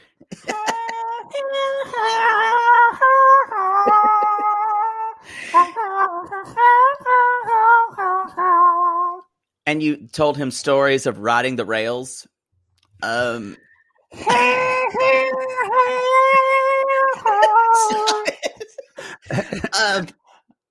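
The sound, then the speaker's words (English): A voice mimics a harmonica, with no real harmonica, making reedy, wavering sustained notes that rise and dip in short phrases. A brief spoken line breaks in midway before the humming imitation resumes. “I don't have a harmonica. I just did that.”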